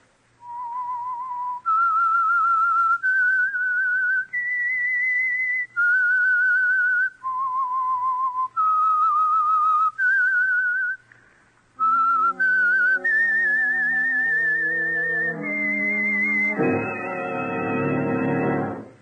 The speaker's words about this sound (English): Here is a 1947 episode of The Whistler entitled The Back Door. So let's listen. The Whistler. Whistle is your signal for the Whistler.